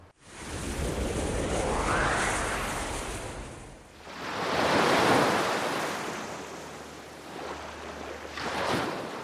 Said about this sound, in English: Listen carefully. Can you hear the whispers of the sea?